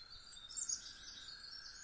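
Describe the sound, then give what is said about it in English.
A dense, overlapping chorus of many birds singing at once, high-pitched chirps and trills blending into a continuous bright wash with a few louder calls standing out, no talking. “I think there's just so many birds singing at once that it just couldn't discern all of them, which is kind of incredible.”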